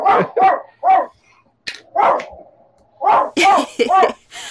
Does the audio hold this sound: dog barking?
yes